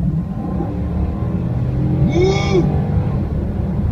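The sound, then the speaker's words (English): A steady, loud engine rumble from a super fast real car (not a golf cart) racing down a highway runs throughout, with one short rising-and-falling rev surging up near the middle before settling back into the drone. “He was driving a super fast car, a real car, not a golf cart, down the highway, just racing.”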